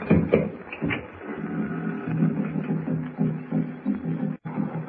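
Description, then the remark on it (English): Muffled tom-tom drums of the Narwan tribe beating in the distance, a low, steady throbbing rhythm that rolls on continuously with no voices over it. “I hear some drums off in the distance. Narwan tom-tom. That's what they are.”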